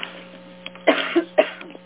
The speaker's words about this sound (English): I cough.